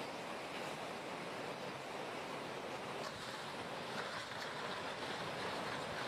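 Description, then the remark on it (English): Loud, steady roar of rushing floodwater from a storm carrying away a house, a dense continuous churning wash with a few faint knocks or cracks rising briefly out of it, and no voices. “How can a house be carried away by a lot of water?”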